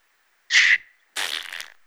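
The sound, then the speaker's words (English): A voice imitates a contorted, angry fart as an impression of art, with two raspy, buzzing bursts: a short, loud blast followed after a brief pause by a longer, sputtering one that trails off. “Yeah, this gave me a contorted, angry, fart.”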